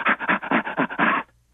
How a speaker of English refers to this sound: I'll give you an example of chimpanzee laughter